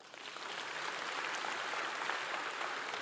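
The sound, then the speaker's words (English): A church audience breaks into steady, dense clapping to show they believe wrestling is fake, holding at an even level for about three seconds, with many overlapping hand claps and no voices. “If you believe wrestling's fake, clap.”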